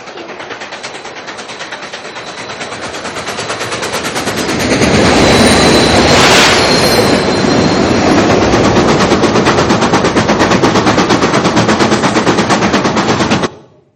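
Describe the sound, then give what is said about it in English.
A wood-fired steam locomotive over 80 years old, burning real logs, chugs in rapid, steady bursts as it picks up speed, swelling louder as it gains power, then holding at full force before cutting off abruptly near the end. “It's real logs that they throw in there. And they burn it, and it becomes this power just increasing and increasing”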